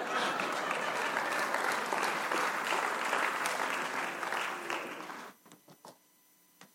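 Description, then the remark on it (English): A church audience at City Church applauds steadily for about five seconds, a dense wash of clapping that then thins out into a few last scattered claps before falling quiet. “And I know for some of you who didn't clap, it didn't feel that way.”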